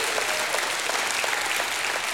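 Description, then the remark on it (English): A large audience gives a hand clap of praise, a dense, continuous wash of applause that stays loud and even from start to finish. “Give him another hand clap and a shout of praise.”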